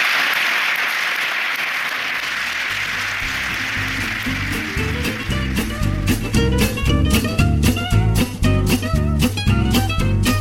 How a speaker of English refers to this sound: I'd like to conclude this session with yet another round of applause. Thank you very much for coming together.